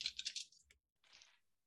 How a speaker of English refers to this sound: Quality dice ASMR for you.